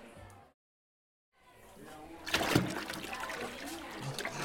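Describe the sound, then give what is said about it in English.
After a short silence, a person's head plunges into a basin of water while bobbing for apples, followed by continuous sloshing and splashing that swells and then churns steadily for a couple of seconds. “Sticking my head in a basin of water.”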